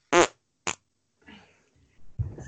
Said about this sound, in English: The thing is as well is I've got like a pop shield on, which is basically, it's just like a net that's caught that fart now. And it's going to release the odour.